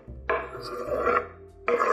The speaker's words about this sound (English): So now don't forget to fold in your halva. And hope your halva doesn't go into your little phone slot. And the chocolate.